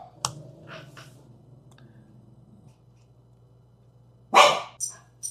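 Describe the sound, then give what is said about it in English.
A dog lets out one loud bark followed quickly by a shorter, softer second bark near the end, after several seconds of near-quiet with a few faint clicks and a low steady hum. “Dude, we should write a scene where Ro's trying to be really quiet. And the dog just is the dog.”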